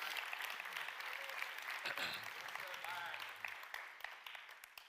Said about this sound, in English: Matter of fact, just clap your hands to the Lord this morning.